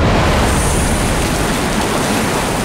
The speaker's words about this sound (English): And with that, the whale blew Ira right out of his blowhole, sending him shooting back up towards the clouds.